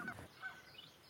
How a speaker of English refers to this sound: You can hear a few Canada geese, and there are some coots out there, mallards, a few great crested grebes out there as well nesting.